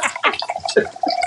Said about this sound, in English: I'm shaking, pouring my shot.